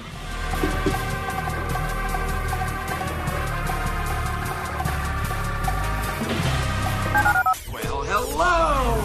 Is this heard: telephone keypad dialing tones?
yes